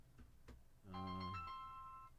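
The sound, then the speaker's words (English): A phone's electronic ringtone for an incoming call sounds a bright, sustained melodic tone for about a second, loud, after a couple of faint clicks from handling the device. “Come on, phone.”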